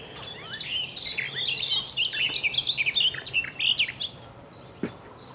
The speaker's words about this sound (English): One black cap. Here he is.